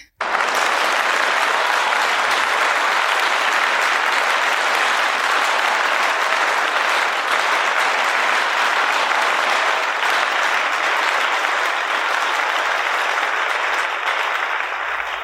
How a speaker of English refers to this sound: So let's give them a round of applause, you guys.